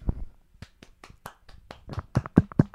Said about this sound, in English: We're all trying to clap.